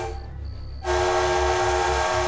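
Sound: steam locomotive whistle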